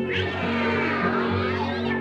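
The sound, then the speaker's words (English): A person imitates a cat's meow in one sustained, drawn-out vocalization lasting about two seconds, fairly loud, with a wavering nasal pitch and no other sounds. “The cat went.”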